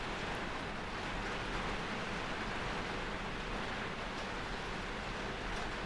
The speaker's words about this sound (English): I don't know if you can hear that. It's raining quite bad outside. I think we're experiencing our second storm.